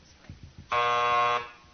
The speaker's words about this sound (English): Vote for Hillary. But she beat you to the buzzer.